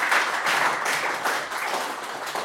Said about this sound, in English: Well done, James. Round of applause for James.